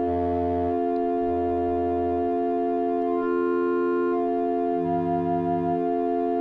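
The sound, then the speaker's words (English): Steady synthesizer sine-wave tones hold a bright harmonic chord, while low bass notes pulse in and out in separate swells, loud with no talking. All oscillators are in sine wave mode and are being frequency modulated by CV from a 281E module. “We're in sine wave mode on all of these.”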